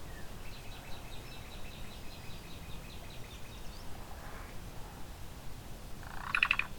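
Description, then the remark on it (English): A black-billed cuckoo, preening just a few feet away, gives a quick, faint series of repeated call notes, then falls quiet before a sharper, louder burst near the end, all over a steady low rumble of background noise. “So I'm up close with a black-billed cuckoo. It's just a few feet away, preening.”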